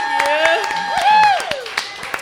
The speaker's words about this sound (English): How about another round of applause for this awesome young lady?